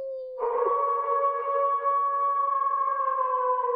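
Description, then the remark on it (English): A single long, sustained wolf howl holds a steady, rich tone for several seconds, loud, with no talking over it. “Yes, wolves.”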